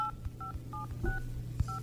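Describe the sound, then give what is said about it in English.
Touch-tone dialing on a Sprint PCS cell phone to call Santa at a North Pole number: five short dual-tone beeps pressed in quick, fairly even succession, clear, over a low steady hum with a few soft bumps. “Okay, I'm gonna call Santa.”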